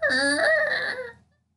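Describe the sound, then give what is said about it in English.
An office chair squeaks in one drawn-out, whining creak that bends slightly in pitch, holds for about a second, then trails off into silence. No one speaks. “The original sin, chair squeaking in podcast.”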